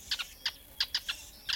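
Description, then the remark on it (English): Sociable weaver calls: a quick series of about seven short, bright chirps in an uneven chattering rhythm, fairly soft, with no talking. “But as BirdNotes' Michael Stein reports, when it comes to building a nest, the sociable weaver takes the cake.”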